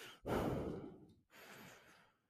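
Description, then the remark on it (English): Two heavy breaths from a person sitting and catching their breath: a long, loud rushing breath followed after a brief pause by a softer, drawn-out exhale, with no talking. “I just sitting here breathing.”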